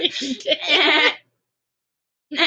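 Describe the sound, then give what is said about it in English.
A person imitates a goat's bleat with a wavering, nasal vocal cry lasting about a second, followed by silence, then another bleating sound starts at the end. “You sound like a goat.”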